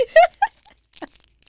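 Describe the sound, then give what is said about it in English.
A brief voiced murmur, then a few short, dry crunching bursts in quick succession as a Milky Way candy bar is bitten and chewed, fairly quiet with gaps between bites. “That is crunchy.”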